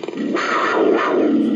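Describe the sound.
A person imitates a panther's roar in a sports segment about the Panthers: one loud, raspy, growling burst lasting under two seconds, rough and breathy throughout, with no other voices.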